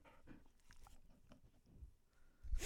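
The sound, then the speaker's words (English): A female husky puppy chewing and gnawing, with irregular wet, crunchy bites and small clicks, ending in a louder burst of chomping. No one speaks. “A little puppy ASMR for you there.”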